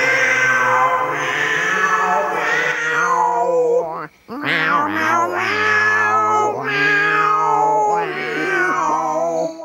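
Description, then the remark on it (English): Three cartoon cats, Stinky and two others, in a trash can outside in the show Doug, drinking milk and singing bar songs: they caterwaul together in loud, drawn-out, warbling yowls that rise and fall almost like singing, overlapping with a brief pause partway through. “But turns out she's outside in a trash can with two other cats drinking milk and singing bar songs.”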